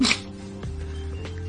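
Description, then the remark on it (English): A single short, explosive cough bursts out at the start, loud and breathy, then gives way to a steady low hum with no talking. “Sorry for my cough.”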